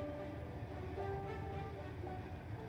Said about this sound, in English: So, the Hogwarts Express makes its way down the tracks, and you laugh and prepare yourselves for year two.